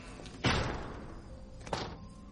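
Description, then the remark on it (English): A heavy door thuds shut with a loud, booming slam that rings out and fades, followed a moment later by a second, softer thump. No one speaks. “The door's locked! She's trapped outside!”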